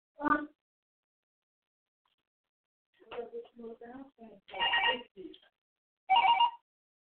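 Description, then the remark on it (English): A house phone rings in several short, fairly loud bursts separated by pauses, with muffled voice-like sounds mixed in between the rings. “Man, where's the house phone?”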